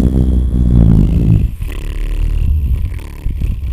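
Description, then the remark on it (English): A long, deep fart: a loud, buzzy low tone wavering in pitch for about a second and a half, then trailing into a rougher, sputtering rumble that fades out. “The longest, deepest guttural blast. Yeah. Just a body cavity fart, dude.”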